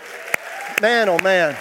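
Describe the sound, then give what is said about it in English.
A church audience at Word of Life claps for the worship team in a steady wash of applause, with a few sharper claps standing out and a voice calling out over it partway through. “And I don't know about you, but I think our worship team needs a round of applause.”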